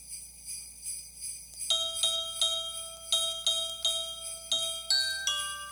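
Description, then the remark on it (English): Bright, ringing bell tones pick out Jingle Bells, one struck note after another in a slightly uneven rhythm, each tone shimmering briefly before the next. No one speaks. “Well, here's …'s rendition of Jingle Bells.”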